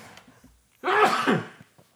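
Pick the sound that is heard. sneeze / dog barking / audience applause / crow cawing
sneeze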